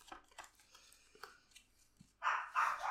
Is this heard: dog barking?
yes